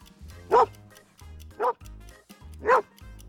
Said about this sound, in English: It doesn't sound like a house. It sounds like a dog. That is correct. I believe it was a border collie, to be exact.